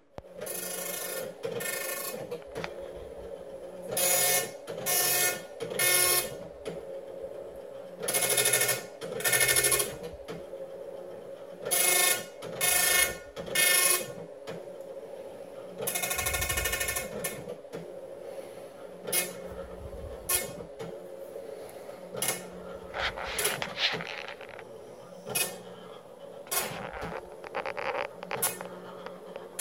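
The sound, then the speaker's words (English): A printer runs on its own, printing with Print Shop, with loud buzzing, rasping bursts as the print head makes pass after pass in an uneven rhythm over a steady mechanical hum. Nobody speaks. “And just to lighten the mood a little bit after all that, I'm gonna here's a video of my dog printing out with Print Shop.”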